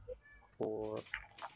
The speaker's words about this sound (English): This cat is going nuts.